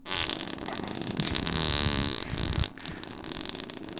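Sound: imitated fart sound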